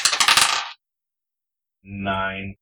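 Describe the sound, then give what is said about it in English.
Dice clatter and rattle for an attack roll with a dagger in a tabletop role-playing game, a quick burst of sharp hard taps lasting under a second, followed by a pause and then a brief, steady, buzzy tone. “So go ahead and make an attack roll with your dagger here.”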